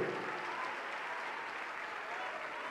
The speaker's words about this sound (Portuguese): Vamos aplaudir ao Senhor Jesus por cada vida que está chegando. Olha que multidão entregando a vida para Jesus. Vamos aplaudir mais.